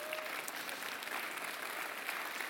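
A church crowd applauds steadily for a Shoals Dream Center employee's work anniversary, dense overlapping claps forming a continuous wash of sound that holds an even loudness throughout, with no voices standing out.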